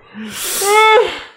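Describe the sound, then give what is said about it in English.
A single yawn, starting with a breathy inhale and swelling into a drawn-out voiced groan that slides downward before trailing off, about a second and a half long. “I'm trying to push those yawns out so they don't come back.”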